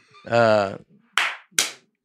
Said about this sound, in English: Just clapping.